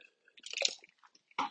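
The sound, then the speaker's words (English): Someone takes a quick sip of water: a cluster of wet slurping and swallowing sounds with small mouth clicks, ending in a short, louder gulp-like burst. No talking. “And then, hold on, I need to take a drink of water.”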